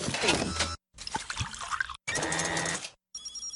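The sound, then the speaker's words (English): A coffee machine pours a cup in a few short, steady bursts of liquid splashing and trickling, separated by brief pauses, with a quieter tonal whir at the end. “Coffee machine, 1 cup of coffee, please.”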